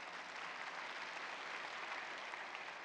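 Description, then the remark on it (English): A church crowd applauds steadily to welcome back one of its deacons, a dense wash of many hands clapping at an even, sustained level for several seconds with no voices standing out. “Just give him a round of applause coming back.”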